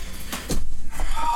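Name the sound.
door opening and closing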